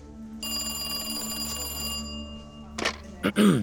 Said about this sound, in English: The sudden, sharp trill of his phone shot him out of his daze.